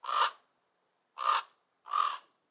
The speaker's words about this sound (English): And actually, the voice of the raven is deep and guttural.